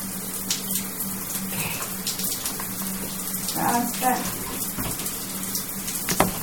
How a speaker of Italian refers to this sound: Ah, apriamo la doccia così si riscalda un po'.